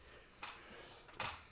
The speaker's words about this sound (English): Bro, was that a little girl sneezing? What is going on? Bless you, though.